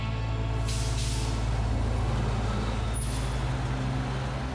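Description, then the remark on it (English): A bus idles with a deep, steady engine rumble as it pulls up in a Scarborough neighborhood in the early hours, broken by sharp hissing bursts of air brakes, one long release early and a shorter one later. “In the early hours of May 4th, 1987, 22-year-old Paul watched from the shadows as Chelsea Hagen got off the bus in her Scarborough neighborhood.”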